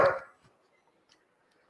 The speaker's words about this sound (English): Third time, somebody else from the family steps on the dog's tail. Again, dog will turn and bark.